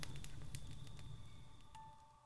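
A campfire crackles with irregular sharp pops and snaps over a low, steady roar, moderately loud, gradually easing over a couple of seconds with no voices.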